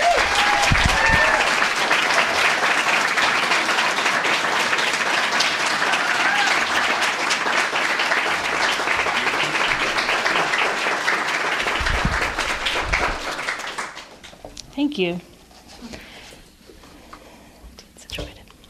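An audience applauds steadily for about fourteen seconds, a dense, even wash of clapping that then fades quickly, leaving a few scattered sounds and quiet.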